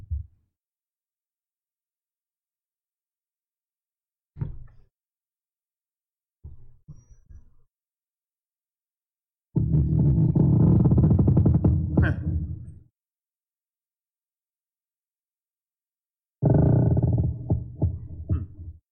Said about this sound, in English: And there's that creaking. Let's have a look at this creaking trees element.